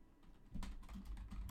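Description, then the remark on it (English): Rapid clicking and clacking of keys on a computer keyboard, a quick run of crisp taps with no voices present. “This is my clicking and clacking again.”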